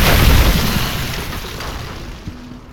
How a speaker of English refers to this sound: What happened? Why is there snow everywhere? Came down the chimney, it's okay.